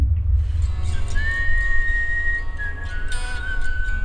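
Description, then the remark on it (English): A whistled melody of a few long, held notes shifting slightly in pitch, the intro of a song, moderately loud, over a steady low rumbling background with no talking. “I think it's because I can sing along with the whistle, and that's the only song I'm on key for whenever I sing or make noise to it.”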